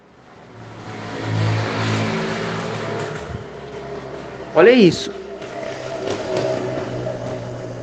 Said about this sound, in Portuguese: Olha, ele volta. Ele tá voltando, o cara da moto.